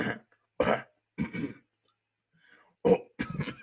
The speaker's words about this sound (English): I'm coughing. You got asthma. I do actually have asthma. I can tell.